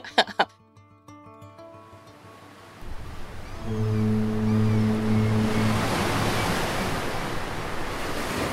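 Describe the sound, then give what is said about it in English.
Steady ocean surf rushes and roars after a short, ringing tonal opening, while a deep, drawn-out horn sounds for a couple of seconds over the waves, at Astoria, Oregon, where the Columbia River meets the Pacific Ocean. No one speaks. “April 28th, Astoria, Oregon, where the Columbia River meets the Pacific Ocean.”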